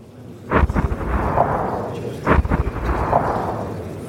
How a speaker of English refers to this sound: Here again the same firefighters face peril and danger with determination and courage. Amid the rain of bombs and falling masonry, they fight the hell of Hitler's making.